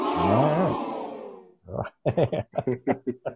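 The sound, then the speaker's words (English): A loud burst of excited crowd cheering swells and then fades away over a second or so, followed by a voice speaking a short run of quick syllables. “That crowd was like very excited about that number of rock bottoms.”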